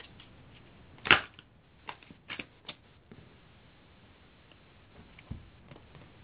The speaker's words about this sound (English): Well, you know, I'm shuffling, you know, and I like to let the cards do the talking as opposed to having a particular routine in which the, you know, a certain number of shuffles, a certain number of turns and so on.